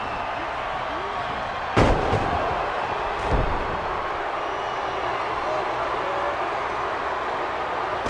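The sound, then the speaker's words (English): A wrestler is slammed onto a wrestling mat with a belly-to-belly throw, a loud, booming thud, followed a moment later by a second, softer impact, all over a steady roar of crowd noise. “Then the Anvil picks up Yoko and sends him for the ride with that belly to belly”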